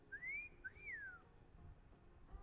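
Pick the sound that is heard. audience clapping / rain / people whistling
people whistling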